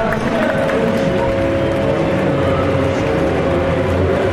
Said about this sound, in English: The sun is shining as Audi win Le Mans for the 10th time. The number one Audi e-tron Quattro crosses the line. The team of André Lotterer, who's in the car at the moment, Benoit Trillier and Marcel Fasser win Le Mans for Audi.